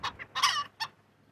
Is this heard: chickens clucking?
yes